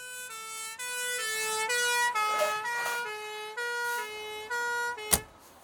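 An ambulance siren blares as the ambulance arrives at a hospital A&E, stepping back and forth between high and low tones in a steady alternating pattern, with a sharp thud near the end and no one speaking.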